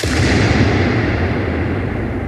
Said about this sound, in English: It's just like this ridiculously long gunshot of a balloon pop.